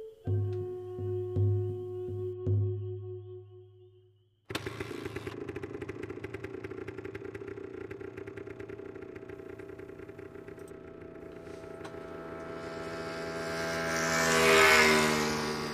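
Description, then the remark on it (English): A motorcycle engine sputters and revs in short bursts, then roars into a steady, loud drone that climbs in pitch near the end, with no talking. “Charlie loved to ride his motorcycle, and he would race it.”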